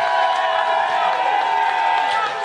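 An audience votes on the winner of a finals by applause, breaking into sustained clapping mixed with cheers and whoops, a dense, steady wash of clapping and shouting voices that stays loud throughout.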